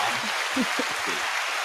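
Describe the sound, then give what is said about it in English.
An audience claps the hosts in as they return, a steady, dense wash of applause that holds at an even level for the whole moment, with faint voices murmuring underneath. “Are you going to clap us in or not?”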